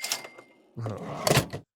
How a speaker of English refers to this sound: The drawer shut makes it worse.